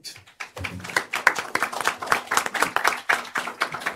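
An audience applauds steadily at the end of a speech, many hands clapping in a dense, continuous patter that starts abruptly and holds at an even, moderately loud level throughout.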